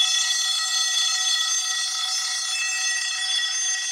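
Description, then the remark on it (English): A loud, continuous electronic alarm blares steadily for the whole stretch, a shrill harmonic tone with no pauses and no voices, sounding harsh like a morning alarm clock. “It's like an alarm clock in the morning.”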